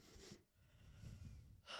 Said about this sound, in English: Sorry, I'm yawning.